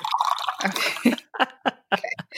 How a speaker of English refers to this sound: Actually, first, let me pour some tea. One moment, please.